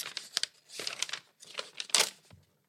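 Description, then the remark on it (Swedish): Crinkling and ripping of tape and packaging as a tightly taped package is torn open, in several irregular bursts with a sharper tear near the end, no voices. “Så hon tejpat det svinhårt också. Så att man vill ju inte att det skulle tjuväppna.”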